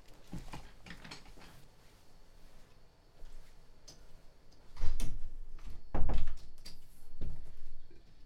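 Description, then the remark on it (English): A door being closed: light mechanical rattles and latch clicks, then a few loud, hollow thumps as it swings shut and knocks into place, with no talking. Its latch is not catching, so the door keeps swinging open. “I don't know how the door keeps just swinging open. I know you hear me close it.”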